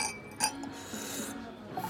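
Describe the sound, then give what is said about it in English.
A single bright clink of glasses touching in a toast to a colleague, ringing briefly with soft background noise and no talking. “I'll drink to that. Cheers”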